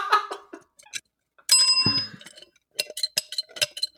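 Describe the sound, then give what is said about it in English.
A small bell rings out with one bright, sustained ding, preceded and followed by a series of lighter, rapid metallic dings and clinks, with no talking. “Well, the bell's nope. Broken, guys.”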